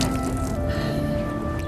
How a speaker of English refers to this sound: The last time I wrung out a towel, I wrung it out alone. And I didn't get this much water out of it.